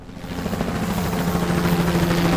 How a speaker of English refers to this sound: Shit! Is that an army helicopter?